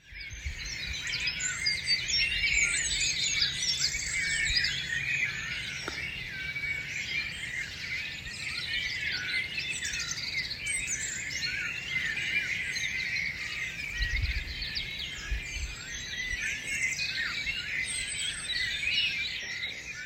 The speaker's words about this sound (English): here is a sound recording of an early May morning dawn chorus in Longborough, a small village in North Cotswolds, Gloucestershire